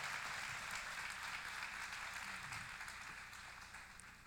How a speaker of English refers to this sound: I'm gonna make everybody clap for that.